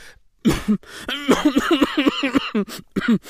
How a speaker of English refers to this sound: A cough to clear goes on too long, sounds too loud, and viciously he admonishes, turning a beetroot burgundy.